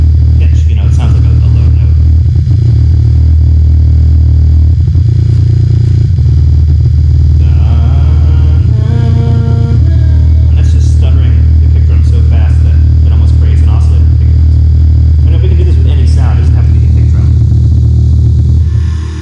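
A synth kick drum is used like an oscillator, retriggered so rapidly it merges into a loud, continuous low buzzing drone, with a brief rising harmonic sweep midway and scattered higher clicks and clatter on top.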